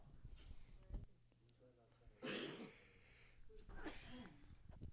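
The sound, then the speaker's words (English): Two harsh coughs, the first a loud broad burst and the second shorter a moment later, with some talking around them. “Bless you. Double coughing.”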